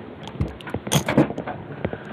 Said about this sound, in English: All right, hang on. I got to adjust my chair again.